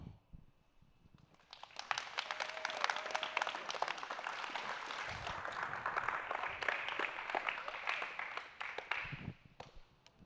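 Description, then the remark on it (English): An audience breaks into loud, sustained applause for seniors who shared that night, dense overlapping claps building quickly and holding steady for several seconds before tapering off, with a few cheers mixed in. “Y'all give another round of applause for all of our seniors who shared tonight.”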